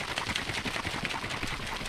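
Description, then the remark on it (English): A breakfast drink made from a large glass of milk and a large package of protein powder being shaken hard in a container, a fast, steady, rhythmic sloshing and rattling that keeps up throughout at moderate loudness with no talking. “The final weird breakfast drink was this large glass of milk with an equally large package of protein powder.”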